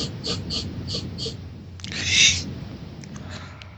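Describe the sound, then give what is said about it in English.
A series of short, quick sniffs, then one long, loud, breathy sniff that rises and fades over low background rumble, with no talking. “For the hearing impaired, that was me sniffing that snatch.”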